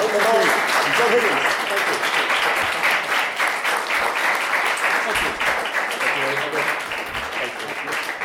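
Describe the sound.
Sustained, loud applause from a sizable crowd for two artists fills the whole stretch, a dense wash of many hands clapping, with a few voices faintly calling out beneath it.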